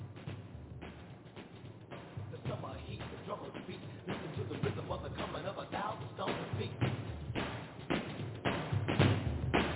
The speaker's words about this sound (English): Yeah. I'm gonna stomp on it. I'm stomping on it.